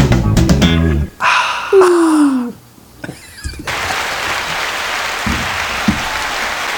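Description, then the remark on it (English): A soundboard sound effect played by pressing a button: a short burst of musical tones and a falling whistle gives way to steady, loud applause from a crowd, a dense patter of clapping that fills the last three seconds. “The crowd keeps growing every week.”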